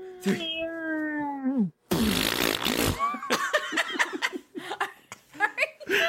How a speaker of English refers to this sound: Are you burping?